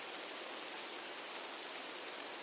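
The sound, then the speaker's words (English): Steady, even hiss of rain falling outside an apartment building, a soft continuous wash with no distinct drops or pauses, fairly quiet and heard alone without any voices. “I stood frozen in the rain, staring at her window.”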